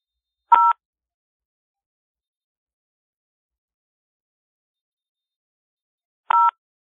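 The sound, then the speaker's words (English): Two short touch-tone dialing beeps, each a brief dual-pitched electronic tone, separated by about six seconds of silence. No voices are present. “Okay, our tones are off.”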